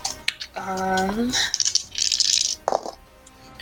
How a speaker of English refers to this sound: That is not the right dice. Let me roll the correct dice that time.